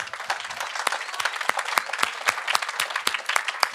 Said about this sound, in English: So big applause for them, please.